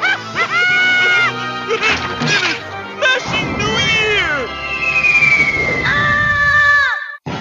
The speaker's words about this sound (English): Yeah, there we go. That was a really thought out scream. That was really good acting there. I really felt the peril in his voice.